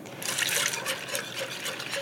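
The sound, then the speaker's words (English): A steady stream of milk pours and splashes into a pan of roux that has been bubbling for a few minutes, a continuous wet trickle with faint sizzling underneath, fairly even throughout, with no one speaking. “Okay, the roux's been bubbling for a few minutes, and now I'm gonna add the milk.”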